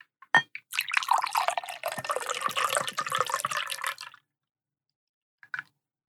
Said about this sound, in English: But I have a Pisco Sour that I just mixed up. So I'm going to go ahead and pour it into my new cocktail glass. New-ish. I bought it for this segment specifically.